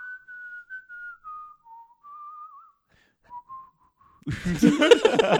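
A man whistles a slow, wavering tune for about four seconds, clear and fairly soft, before a loud burst of voices abruptly takes over.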